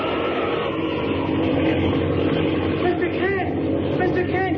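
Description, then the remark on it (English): The engine of an airplane going down in a tailspin, out of control, roars in a loud, steady drone throughout, thick with low rumble, while faint voices and wavering tones rise briefly over it toward the end. “Our plane's going down to us in a tailspin.”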